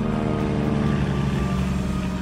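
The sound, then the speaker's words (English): An aircraft engine drones steadily overhead, a low humming roar with layered tonal harmonics that holds an even loudness throughout, with no voices. “Laurence Olivier recites the poem High Flight, and a plane flies overhead.”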